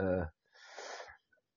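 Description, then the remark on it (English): A brief voiced sound gives way to an audible, breathy intake of air, like a gasp or a few overlapping gasps, lasting about half a second before fading into quiet, in reaction to a rare boat being named as the AQ. “Ooh, I hear some gasps.”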